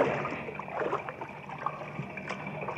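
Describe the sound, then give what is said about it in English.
Water sloshes and splashes steadily as people wade through the water of the partly flooded lower shaft of a secret mine on Saturn's sixth moon, a continuous churning with small splashy bursts and no voices. “As they wade through the water of the partly flooded shaft”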